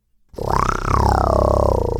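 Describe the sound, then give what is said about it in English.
A lion's roar bursts in after a brief silence, a deep, rough, sustained growl with a rising then slowly falling pitch, loud and steady for under two seconds. “Who dares come in my territory? Roared Jafaru as he landed with a thud.”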